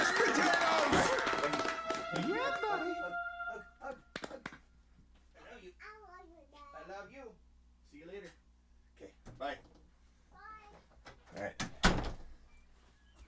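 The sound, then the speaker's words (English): A door bangs shut with a loud thud at the start, then another sharp knock near the end, with wordless voices and a steady hum in between. “Oh, close that door on your way out.”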